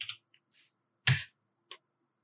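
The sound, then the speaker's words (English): Five ten-sided dice clatter onto a hard surface in a few quick, uneven bursts of sharp clicks, with one louder tumbling rattle in the middle and a final small tap. No voices. “I roll with the full 5d10 this time.”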